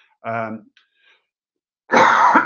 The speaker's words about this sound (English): sorry, I've not been coughing all day. And now I try to talk people. Of course, I'm coughing.